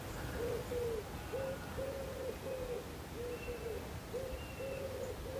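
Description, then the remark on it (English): Soft, repeated cooing calls from wood pigeons or collared doves drift in from the distance, a steady rhythmic series of low hooting phrases over faint outdoor ambience. “Just hear some either wood pigeons or collared doves, I think, in the distance.”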